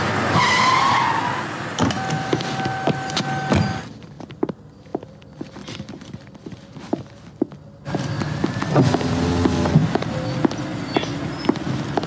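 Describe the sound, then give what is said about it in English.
A car revs and rolls off with loud road noise, goes quieter for a few seconds, then surges again with squealing tires skidding. No voices. “Stop the car. Now, we won't have any of that. Just calm down. Start the car!”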